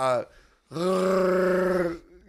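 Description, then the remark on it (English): A person vocally imitates a Wookiee roar like Chewbacca from Star Wars: a short grunt, then a sustained, strained, rising-falling groan lasting over a second, loud and harmonically rich. “Can you make a Wookiee noise, though?”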